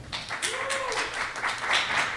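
One person clapping alone for himself during an audience vote on a selfie round: a quick, steady run of sharp claps for about two seconds, with a brief gliding vocal tone under the early claps.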